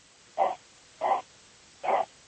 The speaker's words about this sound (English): What kind of dog is that? Cool. I was just going to say, whoever's dog that is, if you would not mind muting yourself, that would be very helpful.